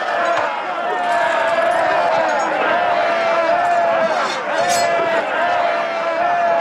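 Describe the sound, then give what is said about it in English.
A stock screaming sound effect used repeatedly in a show during an attack scene: a man's drawn-out, high-pitched scream cuts through a loud, busy wash of crowd commotion and scuffling, staying strong and steady throughout the few seconds. “listen to this sound effect, this like screaming sound effect they use.”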